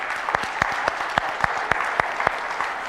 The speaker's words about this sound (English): And they're actually, the guides in Ulster are celebrating 100 years this year of the Girl Guides in Ulster. So give them a wee round of applause to encourage them.